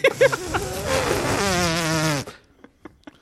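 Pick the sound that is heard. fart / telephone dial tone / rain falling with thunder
fart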